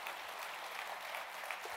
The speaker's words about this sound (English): Give the Lord a hand clap, everybody.